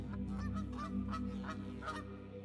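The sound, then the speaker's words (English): A flock of Canada geese flying overhead in V formations honks in an overlapping chorus, harsh nasal calls repeating every fraction of a second over a steady low rumble, with no voices present. “And if I'm honest, sometimes the chorus of honks is a bit too much.”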